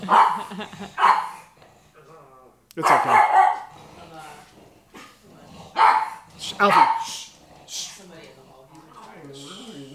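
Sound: dogs barking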